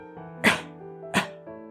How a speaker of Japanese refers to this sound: あれ？お母さん、咳をしています。